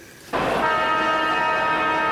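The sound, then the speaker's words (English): A loud half-time siren at a football match cuts in abruptly after a brief low murmur and holds as one steady, buzzing horn-like blast to the end, with no talking. “Half time. That's the half time siren, ladies and gentlemen.”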